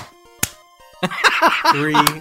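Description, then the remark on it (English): After a 3, 2, 1 countdown meant to make a group clap together, a single sharp hand clap rings out, then a few more ragged claps land at uneven moments, out of time with each other, under a burst of overlapping voices and laughter. “Then we're going to clap now.”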